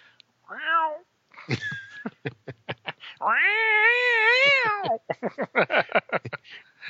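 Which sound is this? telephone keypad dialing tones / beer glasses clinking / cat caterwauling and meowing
cat caterwauling and meowing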